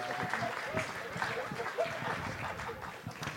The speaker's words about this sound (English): What a great round, guys. Give it up. Round of applause.